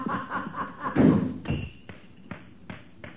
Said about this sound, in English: Why, that rat. That dirty double-crosser. Did you hear him slam that door? Trying to make me jump and knock these ashes off.